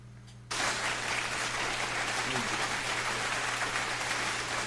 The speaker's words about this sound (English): Where's my claps? Sure. I got some claps.